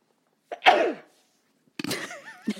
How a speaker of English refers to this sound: Excuse me. Bless you. Okay, it was coming. I couldn't stop it. You know, that could be a good example of a segue because it's like you sneezed, mm-hmm. And it's not something that you chose to do, but that's just what your organism had you do.